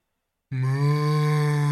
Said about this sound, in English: The cows cry, startled by the bus's arrival.